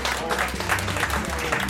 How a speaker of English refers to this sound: Man, but clap it up for all the producers that came up and played some beat just now.